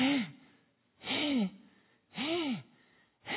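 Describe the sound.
A person imitates the heavy breathing of a pregnant dog about to deliver, at 2 o'clock at night: three loud, raspy, rhythmic breaths about a second apart, each with a rising-and-falling voiced tone, with no talking.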